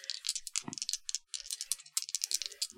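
Dice clatter and rattle in a rapid, uneven burst of bright clicks lasting a few seconds, with one duller knock partway through as a die drops; no one speaks.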